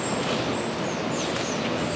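A cicada's continuous, high-pitched buzzing drone holds steady and fairly loud for the whole two seconds, with no pauses and no voices.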